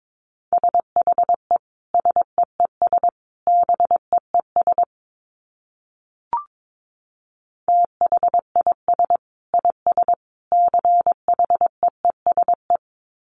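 Morse code tones at a brisk 22 words per minute: a steady mid-pitched beep keyed into quick dots and dashes, broken by a pause and a single click halfway through.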